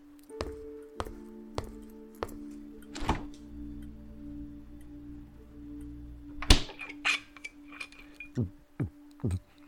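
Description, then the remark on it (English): A refrigerator door opens with a soft thunk and a steady hum, followed by bright glass clinks and a sharp clatter as a bottle of water is taken out, then a few quick gulps or pours. “Do you have anything to drink in here? I'm a little parched. There's some water in that fridge over there.”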